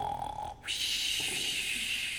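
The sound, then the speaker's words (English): A voice imitates an elephant's loud snore: a short nasal hum, a brief pause, then a long, harsh, hissing rasp that holds steady for over a second, fairly loud. “The elephant was snoring loudly.”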